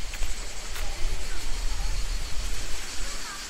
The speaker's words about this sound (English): There are lots of large stones to my left, demarcating the edge of the road, and then the river is on the right, the Cascade is on the right. You can hear it now, I imagine.